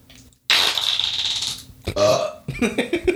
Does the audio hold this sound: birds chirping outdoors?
no